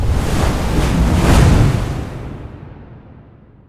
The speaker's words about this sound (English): The next wave was already looming, and within seconds it had crashed down upon him with all its force.